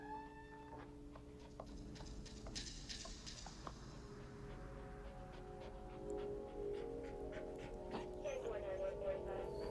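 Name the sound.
dog panting and whimpering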